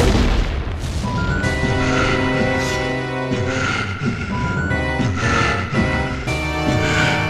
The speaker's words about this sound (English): But suddenly, we and the characters hear a sound. Another nod to the importance of audio in this story. It sounds like a metal bang. The wind goes silent.